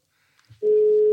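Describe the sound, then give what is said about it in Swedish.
A few faint clicks as a phone call is placed, then a loud, steady telephone tone comes on and holds unbroken to the end, like a line tone heard through a handset after dialing. “Jag ringer en ärende så får vi se vart vi är.”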